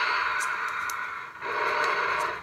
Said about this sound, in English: Stop breathing.